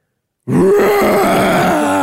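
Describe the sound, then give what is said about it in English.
A performer from an APAN stage production of Beauty and the Beast lets out a loud, sustained throaty roar, imitating a beast, starting abruptly after a moment of silence and holding a gravelly, growling tone for about a second and a half. “can you give us a beastly roar to send you off?”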